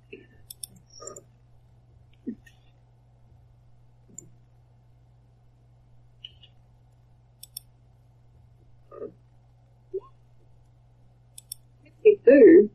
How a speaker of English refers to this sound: So, you need to roll me a percentile check. Yeah, I'm just thinking. Can be just as easy. How to do that on here? I can roll. Oh no, I've got. I can go get my dice. D100. D100. Yeah, roll one D100.